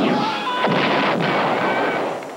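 Dense, loud barrage of electronic laser blasts and explosive booms from the Star Wars arcade game, crackling and rumbling continuously with sharp zaps cutting through, a frantic arcade shooter battle.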